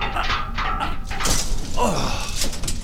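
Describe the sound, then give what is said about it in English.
A heavy elevator door is strained and forced by people trapped in a rising elevator, with scraping, rattling metal and dull thunks over about three seconds, fairly loud, with muffled voices mixed in. “help me get this door open. Oh, it won't budge.”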